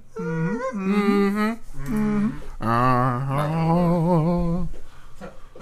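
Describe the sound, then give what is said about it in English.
A person imitates a cow, letting out three drawn-out, wavering moos in a row, loud, with short pauses between them and no talking. “I'm gonna do the cow voice.”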